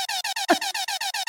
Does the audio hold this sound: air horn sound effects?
yes